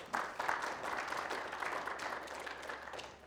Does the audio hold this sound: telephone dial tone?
no